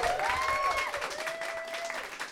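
A crowd at a comedy show at Meltdown applauds the guest of honor with dense, continuous clapping, while a drawn-out cheer or whistle rises and holds above the noise.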